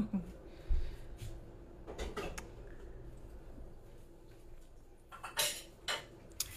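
Dishes clatter and clink in two short bursts of sharp knocks and scrapes, with a few softer taps in between, over a low, steady background hum.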